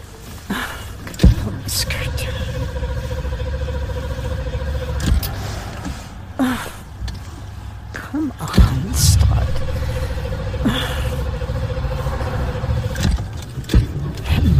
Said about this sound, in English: I'm going to start the car.